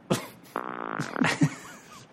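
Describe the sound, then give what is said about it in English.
A short, buzzy fart sound lasting about half a second, fairly loud, surrounded by brief breathy noises and faint vocal sounds. “May I fart with you?”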